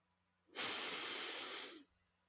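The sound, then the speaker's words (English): A single long, deep breath pushed out, a steady airy rush lasting just over a second before fading into quiet, taken as part of a guided deep-breathing exercise. No one speaks. “And we can do that by taking a few deep breaths.”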